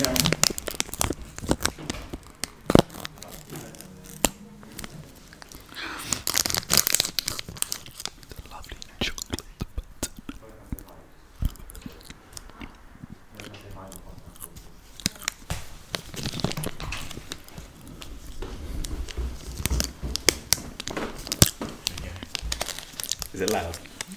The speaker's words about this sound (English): Yeah, it's very loud. It sounds like the chocolate button's crunchy. It's nice ASMR.